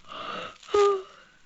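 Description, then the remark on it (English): Heavy breathing of a woman who seems to have fallen asleep: a long, rushing breath followed by a louder, whistling wheeze on the next inhale, with no talking. “From her breathing, I thought she'd fallen asleep, but I had to be sure.”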